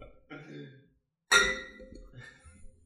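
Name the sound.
glasses clinking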